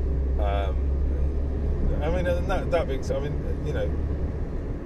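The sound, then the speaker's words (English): A steady, deep rumble fills the inside of a moving car, constant, while the driver talks intermittently over it. “I mean, it's just me talking whilst I drive my car.”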